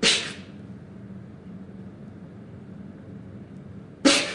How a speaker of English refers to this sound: This means taking very short, sharp breaths and then holding it in for 3 seconds, which means you're basically doing it while looking like a bulldog swallowing a wasp.